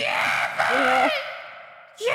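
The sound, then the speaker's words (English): A man lets out a strained, high-pitched squealing yell that rises and wavers for about a second before trailing off, loud, followed by a brief second vocal burst. “Did you hear the squeal that Joey Styles let out when he yelled?”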